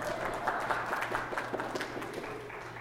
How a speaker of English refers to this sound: Yeah, clap it up